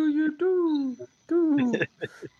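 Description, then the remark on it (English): A human voice imitates a pigeon's coo: two drawn-out, falling tones with short warbling bursts between them, fairly loud, with no real words spoken. “Ah, pigeon, there we go.”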